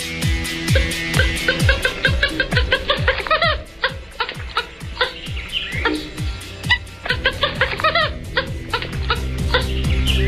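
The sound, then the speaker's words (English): A swamp hen of the rail family gives a rapid series of squeaky, clucking calls, harsh and chattering, loud over a continuous wash of background birdsong. “And here's its kind of squeaky, clucking call.”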